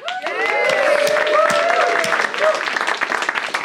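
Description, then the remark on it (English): A studio audience at a TV game show claps steadily and loudly on the host's clapping signal, with a few voices whooping and cheering over the applause, which holds for several seconds before thinning slightly at the end. “I almost forgot to give the clapping signal.”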